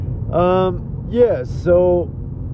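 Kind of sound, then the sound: vehicle, inside a car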